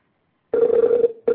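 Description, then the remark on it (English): A steady electronic ringback tone from an outgoing phone call to bring a caller on the air sounds after a moment of silence, holds for about half a second, pauses briefly, then starts again, clear and fairly loud. “Now, we had a caller who wanted to be added real quick, so I'm going to bring him on here. Ringing now.”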